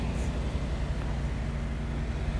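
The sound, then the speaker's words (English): A steady, low rumble of outdoor traffic outside a Circle K convenience store, like an idling engine mixed with passing vehicles, continuing evenly throughout with no voices. “I am currently waiting outside of Circle K to go to school because I'm riding the bus like a loser.”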